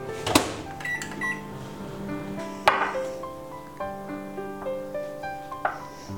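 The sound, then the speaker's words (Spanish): A microwave oven melting chocolate runs with a low, steady hum, broken by a sharp clunk near the start and another a few seconds later, while soft tonal music plays in the background. “Derrito el chocolate en el microondas.”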